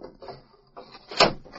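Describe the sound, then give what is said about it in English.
A wooden window in a stuffy back room is shoved open in a few short scraping pushes, ending in a louder knock as it slides up. Fairly quiet, with no voices. “Whew! stuffy in here. I'll open the window.”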